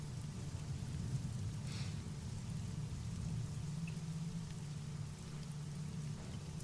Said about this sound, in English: You could hear a pin drop if it wasn't for the rain.